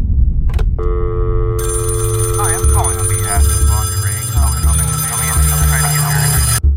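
A telephone rings with a steady, bright electronic tone that swells and holds without pause, fairly loud, while indistinct voice-like sounds murmur over it.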